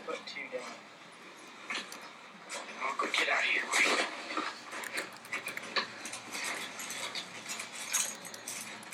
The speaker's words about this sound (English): You gotta see this thing when it hits a freaking rat. The noise that the rats make.